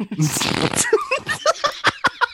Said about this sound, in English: I'm coughing. I haven't even smoked.